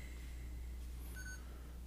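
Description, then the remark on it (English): A camera gives a single short, high electronic beep as its storage runs out of space, faint against a steady low hum, with no voices. “I think my camera might have just run out of space. Let me see. Oh, it was the camera. Went beep.”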